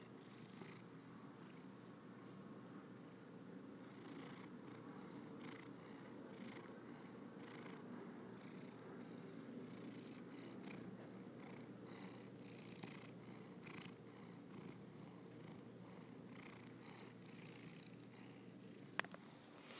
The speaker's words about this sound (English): You have just been witness to another cat purring session.